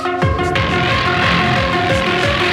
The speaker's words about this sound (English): Today, the light from the Big Bang is still spreading out. Hear it as a radio hiss.